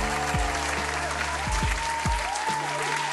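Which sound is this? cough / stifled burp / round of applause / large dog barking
round of applause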